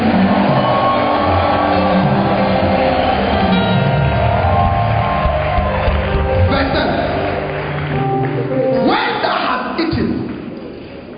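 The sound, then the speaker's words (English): An audience claps and shouts for the Lord together in a loud, dense wash of cheering voices and scattered hand claps that holds steady for about ten seconds, then eases off slightly at the end. “Oh, clap your hands for the Lord and give the Lord a shout.”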